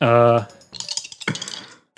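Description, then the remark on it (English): Six-sided dice are rolled for a dexterity check, rattling and clattering across a hard surface in a quick burst of small tumbling clicks lasting about a second, preceded by a short sustained vocal tone. “Then I'm going to roll for that 20 dex so you can tell me what they are.”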